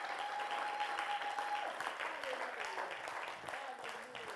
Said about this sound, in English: Can we give the Lord one more clap? Can we thank him?